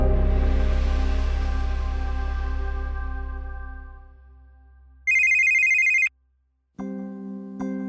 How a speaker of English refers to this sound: No one likes the sound of a ringing phone in the middle of the night.